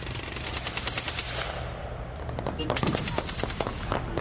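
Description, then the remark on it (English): Bursts of rapid automatic gunfire crackle almost continuously in a frontline battle between Kurdish troops and ISIS in Iraq in 2016, sharp overlapping shots over a rough background din, growing denser and louder toward the end. “it wasn't the sound of drills ringing in Michael Martin's ears, but the sound of gunfire”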